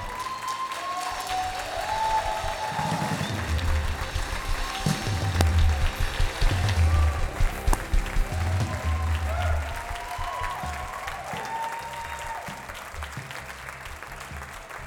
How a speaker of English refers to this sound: Some people are cheering over here before they've heard the message.